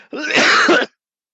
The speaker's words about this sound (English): He's coughing.